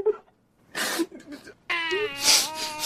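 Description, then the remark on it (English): A voice imitates a little sister's sniffling whimper: a few short, breathy sniffs, then a longer, wavering high-pitched whine that swells louder toward the end. “What we do is little sister, little sniffles.”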